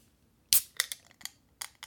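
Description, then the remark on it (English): A sharp metallic crack as a beer is opened, followed by a handful of quick, bright clicks and short fizzy bursts, with no talking. “Cracking of a beer.”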